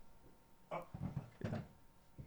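Several hollow knocks on real wood for luck, in a quick, uneven cluster, then one more after a short pause. The thuds are fairly solid and low, with no talking over them.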